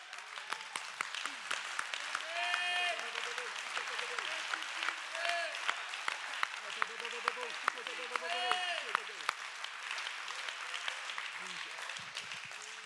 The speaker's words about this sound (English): Let's clap our hands.